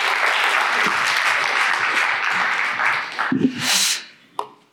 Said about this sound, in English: Let's give him another round of applause.